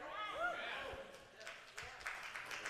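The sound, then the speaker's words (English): An audience breaks into applause, scattered claps thickening into a steady patter of many hands, with a raised voice or cheer sounding over the start. “We're applauding God's word.”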